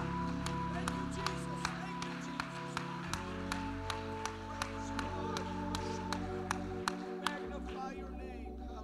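A church audience claps to Jesus in a steady, even rhythm as a preacher comes to the pulpit, crisp claps landing about twice a second over sustained, held keyboard chords.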